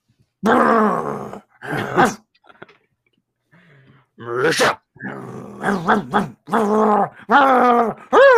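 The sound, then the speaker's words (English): A person growls and groans like a ghost dog in a string of short, loud vocal bursts, with a brief quiet pause partway through before the growling picks up again. “Ghost dog? No, no, not again.”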